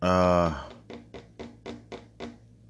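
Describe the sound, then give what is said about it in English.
A brief voice gives way to about seven crisp keystrokes on a computer keyboard, typing a web search for JetBlue stock, tapped at a steady, unhurried pace. “I'm just going to Google and I'm just typing in JetBlue stock”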